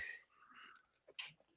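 A single quick sneeze: a sudden sharp burst of hissy, breathy noise after a moment of soft breathing and faint murmuring, all fairly quiet.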